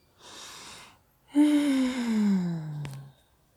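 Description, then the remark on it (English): A breathy inhale through the nose lasting under a second, followed after a brief pause by a long, voiced sigh that slides downward in pitch and ends with a small click. “I love breathing it in.”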